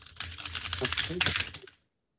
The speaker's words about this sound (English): If you heard my keyboard, also I just beat him, but if you heard my keyboard clashing, just going.